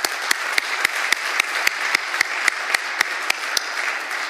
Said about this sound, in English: You know, just big, mad props to all of you folks who did Martin Luther King Day service opportunities. That just made my week. Can we give them all a round of applause, folks?